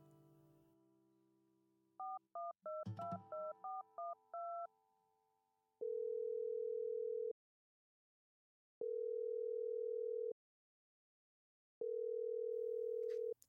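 A quick run of touch-tone dialing beeps as someone phones a person, then a steady ringback tone repeating three times with pauses between, like a phone call ringing out on the other end.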